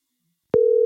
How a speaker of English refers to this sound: Oh, it's ringing. That's a good sign.